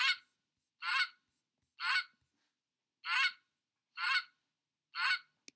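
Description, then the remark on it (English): A goose honks six times in a steady rhythm, each call a loud, harsh, nasal blast about half a second long, separated by short silences. No one speaks. “I appreciate all the supportive honking and send it back to you as well.”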